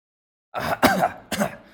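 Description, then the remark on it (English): A short run of harsh, raspy coughing from a young boy having an asthma attack: a rough throaty rumble followed by two sharper hacking bursts, fairly loud, with no talking. “He's an Earthling on this weird planet, and he's having an asthma attack!”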